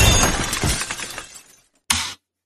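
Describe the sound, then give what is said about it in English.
A loud car crash sound effect bursts out with shattering, breaking glass, a dense clatter that tumbles and fades over about a second and a half, then one short final smash of debris. “Put in a sound effect of a car crash.”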